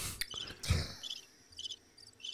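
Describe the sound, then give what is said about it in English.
A cricket chirps in short repeated pulses, a steady rhythm of bright trills against a quiet background, with a soft thump near the start. “I've been waiting for the cricket.”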